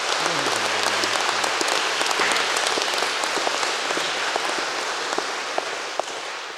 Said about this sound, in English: You can clap for them both.